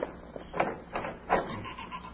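A house door creaks open in a few drawn-out, squeaky groans, moderately faint and muffled, with no voices present.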